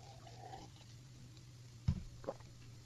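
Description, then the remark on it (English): Someone takes a sip of water: a couple of brief, soft wet gulping sounds near the end, set against a steady low electrical hum, with no talking. “That was not coffee, by the way. That was water.”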